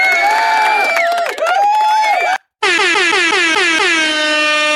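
air horn sound effect

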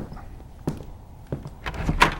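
front door being opened

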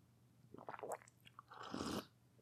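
sipping tea

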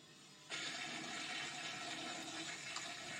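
toilet flushing

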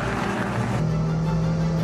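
racing car engine

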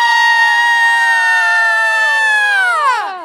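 audience screaming and cheering

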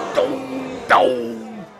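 crowd booing

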